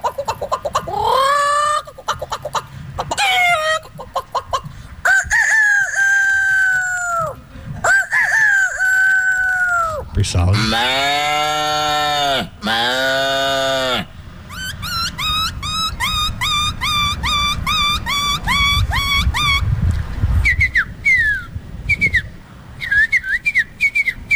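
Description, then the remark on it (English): A man runs through a quick series of loud animal imitations, mostly bird calls: swooping cries, a rooster-like crow, then rapid whistled trills, one right after another. “I guess they say going viral for his ability to make animal sounds?”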